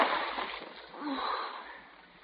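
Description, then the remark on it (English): A splash of a flashlight dropped into water, followed by brief sloshing and bubbling as the water settles, fairly quiet with no voices. “You dropped it in the water.”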